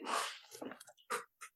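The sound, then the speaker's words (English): A single loud, sharp sneeze bursts out at the start, followed by a few shorter, quieter snorts and breathy noises. “Bless you.”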